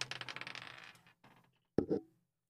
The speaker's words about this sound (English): I dropped the dice.